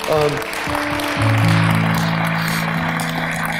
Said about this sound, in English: All I can ask you to do right now is, if you can say amen to what I just said, tell Jesus you love him, clap your hands, okay?